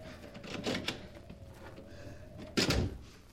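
An unlocked door of a house is opened, with a soft clatter of the latch and handle followed by a louder, sharper thud as it swings free, over a faint steady hum.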